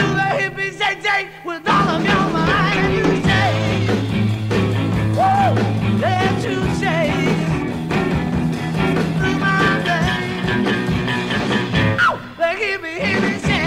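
A 1960s rock and roll song plays at full volume, a sung lead vocal gliding over strummed guitars and a sustained bass line after a brief, thinner opening bar.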